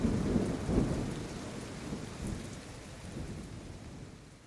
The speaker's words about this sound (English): Welcome to the Deep Sleep Sounds podcast. You're listening to Epic Thunderstorm.